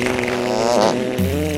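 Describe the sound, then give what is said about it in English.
A loud, buzzy fart noise from a jar as its lid is opened sounds continuously, holding one reedy pitch, briefly rising, then dropping to a lower tone for the last half second. Nobody talks over it. “Thank you so much, guys, and here we go with the fart song.”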